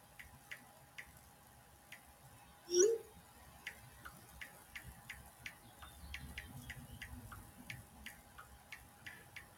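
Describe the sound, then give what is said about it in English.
Soft, quick ticking taps from typing on a phone touchscreen, irregular, with one brief louder bump early on; no one speaks. “I'm typing on my phone here.”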